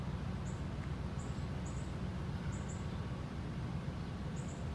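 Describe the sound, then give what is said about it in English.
Calls of two blue jays, short high-pitched notes repeating in quick pairs, thin over a steady low outdoor rumble, with no one speaking. “Fucking birds are nasty. Two blue jays.”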